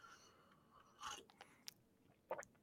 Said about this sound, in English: I wanted to see the audio of the sip, so I was quiet.